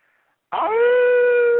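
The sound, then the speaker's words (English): A phone caller imitates a wolf howl: one sustained, steady tonal howl that rises quickly and holds a long, clear pitch, loud, starting after a brief silence. “Well, before you go, you want to give us a howl?”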